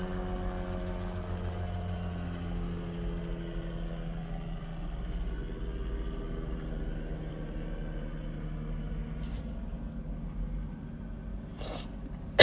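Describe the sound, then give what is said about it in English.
A helicopter passes by with a loud, steady low drone and throbbing engine rumble that fills the whole stretch, plus a couple of brief sharp clicks near the end. “So his blog, hang on, let's let this helicopter go by.”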